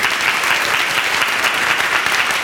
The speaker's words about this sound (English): All right, give them a round of applause for sharing. Thank you.